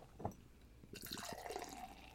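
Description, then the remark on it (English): A short knock, then Hooch Shootin' beer pours into a glass in a steady, fizzing splash of hiss, with a faint ringing tone as it fills. No one speaks. “Ooh, that is very, very, very foamy, very hazy.”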